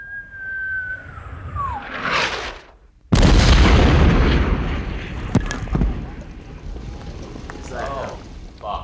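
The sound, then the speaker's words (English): A falling whistle of an artillery shell, a brief hush, then a loud, sudden explosion as it hits the middle of a road about 30 feet in front of a stopped car, rumbling and crackling on for several seconds with scattered debris-like pops. “As an artillery shell hits the middle of the road about 30 feet in front of you.”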